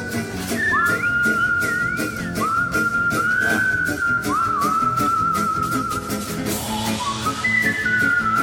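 A professional whistler carries a tune in clear, pure, high tones with swooping slides and dips between held notes, playing loudly over a steady, rhythmic instrumental backing track.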